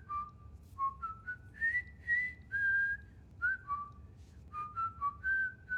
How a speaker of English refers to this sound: You've definitely heard a whistling song from the movie.